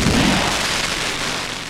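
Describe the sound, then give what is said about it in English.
A loud crack of thunder from a lightning sound effect breaks open with a deep rumble at the start, then settles into a sustained, hissing roar that fades slightly over under two seconds, with no voices present. “But anytime anyone else says it, no lightning.”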